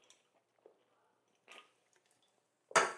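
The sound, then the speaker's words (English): Someone takes a sip of a drink: a few faint wet lip and liquid sounds, a short slurp, then a louder swallow or clunk at the end. No one speaks. “Let me take a sip.”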